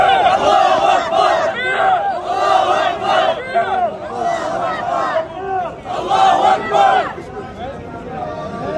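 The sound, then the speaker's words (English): A large crowd of pro-Palestinian activists shouts Allahu Akbar at praying Orthodox Jews in Teaneck, New York, in loud, overlapping, rhythmic chants, the voices swelling in repeated waves with only brief dips for the full nine seconds. “One group praying, one group shouting Allahu Akbar.”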